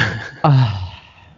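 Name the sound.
human yawn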